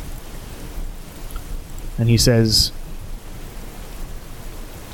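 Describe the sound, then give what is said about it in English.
Steady, hissing rain ambience fills the background at a moderate level throughout, with a person briefly speaking a few words over it near the middle. “Can you turn the rain down?”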